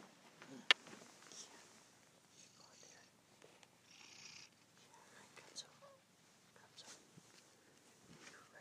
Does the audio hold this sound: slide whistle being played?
no